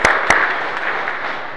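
An audience applauds, a steady wash of many hands clapping at once, with a couple of sharper claps standing out near the start and the sound holding fairly even throughout.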